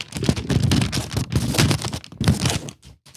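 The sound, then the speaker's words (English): Continuous crinkling of receipt paper, a dense crackly rustle that keeps going for about three seconds with brief pauses, fairly loud and with no voices over it. “I have some crinkly receipt paper.”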